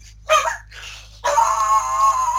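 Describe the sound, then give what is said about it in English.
A dog barks excitedly, two quick yips followed by a long, drawn-out whining bark, fairly loud with no one talking. “Yep, Dwayne's dog's happy because somebody's home, probably.”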